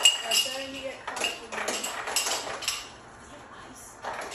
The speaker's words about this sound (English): Every time the ice maker goes on, he just runs. He likes it. He likes it, yeah.